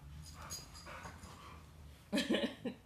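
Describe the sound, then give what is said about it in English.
A dog shuffles and snuffles, running back to the living room after trying to go into the kitchen, then gives a short burst of whiny, breathy vocalizing near the end. Soft background hum throughout. “He just pretended like he wasn't trying to go into the kitchen, so he ran back to the living room.”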